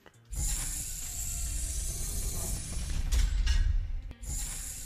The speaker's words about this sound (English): Whoa. Knocking stuff over.